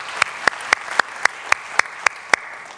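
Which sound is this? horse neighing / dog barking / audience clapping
audience clapping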